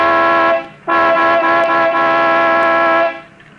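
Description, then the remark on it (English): A loud truck horn blares in two long honks, a short blast followed by a longer sustained one, with a deep, brassy tone rich in harmonics. “I'll give it the horn.”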